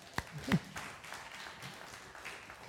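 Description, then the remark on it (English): A crowd applauds softly: a couple of sharp claps open, then a steady, fairly quiet patter of many hands clapping continues for a few seconds. “Will you give her a round of applause?”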